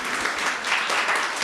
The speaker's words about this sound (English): So thanks for serving us so well this morning. Did good work. Good work. Yeah, you can clap again.